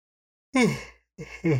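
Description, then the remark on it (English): A drawn-out yawn: one long breathy exhale with a falling voiced tone, then two shorter breathy bursts trailing after it. No words are spoken. “That was a real yawn.”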